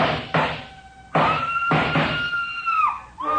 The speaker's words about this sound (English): The scream filled the house, high and frenzied.